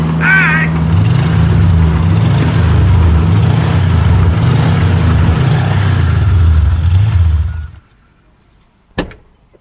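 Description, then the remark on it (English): A backhoe's heavy diesel engine rumbles loudly with an uneven, pulsing growl as it drives up and parks, then shuts off abruptly, leaving quiet broken by one sharp metallic clank. “Dude, what the hell are you doing on a backhoe?”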